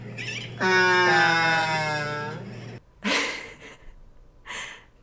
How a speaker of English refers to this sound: Another cool thing to note is that they're generally fairly silent birds, which I feel like is really uncommon amongst birds overall. But when they do make sounds, they, like, moo. Seriously, listen.